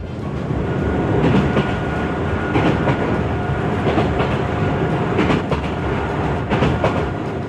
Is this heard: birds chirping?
no